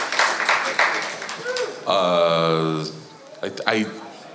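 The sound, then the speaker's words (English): An audience at the end of a show claps in a dense, noisy patter, followed by a long sustained voiced cheer and then brief shouts, with talking mixed throughout. “Don't clap for us.”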